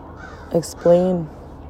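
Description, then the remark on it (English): Two crow caws sound: a short, clipped one, then a louder, drawn-out call that fades away. Nothing else is heard apart from a faint background hum. “And we have the craw, the crows.”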